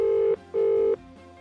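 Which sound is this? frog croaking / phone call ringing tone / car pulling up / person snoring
phone call ringing tone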